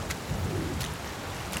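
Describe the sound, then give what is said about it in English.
A steady stormy wash of wind and pelting hail in a hail shower, with a low rumbling undertone and a few sharp clattering hits spaced out over the moment. No voices. “Listen, we have to get you to shelter. The hail's coming in from...”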